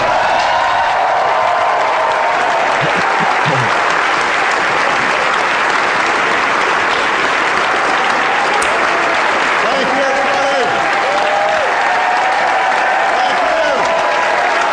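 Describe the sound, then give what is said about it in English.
Loud, sustained applause from a large crowd at a celebration, following the introduction of the President of the United States, Barack Obama: a dense steady roar of clapping with occasional cheers and shouts rising through it, never letting up. “I could have cut the applause out, but I felt it was important to set the stage.”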